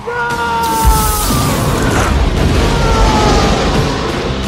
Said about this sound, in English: Sindino betrays them and then they blow up the plane. It's like, Sigh! And then he throws a cigarette onto the leaking jet fuel and goes, Anara.